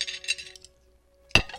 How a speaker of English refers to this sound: could you please help me put these dishes away? Yes, Mama.